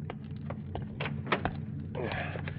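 Rustling and shifting movement over a low steady hum as a hitchhiker climbs back into a car, with a few soft thumps and a dull car door shutting, followed by a brief scraping slide.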